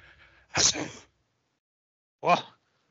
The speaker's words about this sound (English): What was that? A sneeze? In my presence?